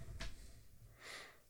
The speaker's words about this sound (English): Remember, don't eat it just yet. We're gonna sniff. Sniff it.